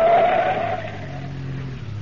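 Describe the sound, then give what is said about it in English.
A car's tires squeal in a sharp, drawn-out skid over a low engine rumble, fairly loud. The car is driven at full throttle into a curve and then cut off to the side of the road. The sound fades slightly as it swerves and slides to a stop. “I ran at the turn and then cut off to the side of the road.”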